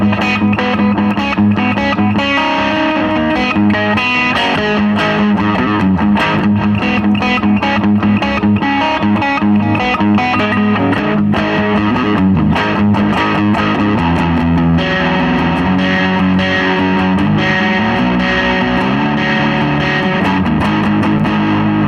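A heavily distorted electric guitar plays continuously for about twenty seconds, loud and dense with gritty, buzzing overtones and shifting chords, with no voices over it.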